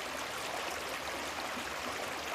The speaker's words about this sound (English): Tonight's meditation will have the creek in the background, and it'll go on for a while after it's over.